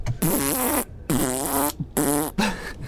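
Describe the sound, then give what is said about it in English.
A man makes four loud, buzzy fart noises with his mouth in quick succession during a demonstration of a toilet, each a wavering raspberry lasting under a second with short gaps between, with no other talking. “He's farting out of his mouth.”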